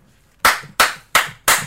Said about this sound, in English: let's go ahead and give our snaps and claps and all whatever we give them. Let's get ahead and give it to what you. What are you giving this rating for this?